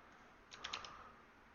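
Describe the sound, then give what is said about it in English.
A short cluster of four or five quick computer keyboard key clicks from a malfunctioning keyboard that keeps repeating keys, fairly quiet, against a faint background hiss with no talking. “Whoa, my keyboard's acting crazy, man.”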